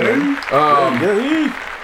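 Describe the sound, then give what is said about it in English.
A short burst of applause for the Big Three league expanding, with a steady clapping wash under loud, whooping vocal cheers that rise and fall, energetic, lasting under two seconds. “Hey, big round of applause for that.”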